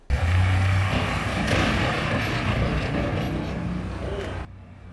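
A U-Haul truck engine revs hard, followed by a sustained loud, rough roar of crashing and scraping as it rams protective security bollards outside the White House overnight, stopping abruptly near the end, with no talking.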